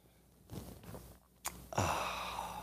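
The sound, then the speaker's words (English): A person sips coffee: a soft breath, a quick click, then a long airy slurping draw that stays fairly loud to the end. No one speaks. “And join me now for the unparalleled pleasure, the dopamine of the day, the thing that makes everything better. It's called the simultaneous sip.”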